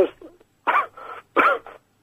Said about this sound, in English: Are you all right? Yeah, I have a little cough.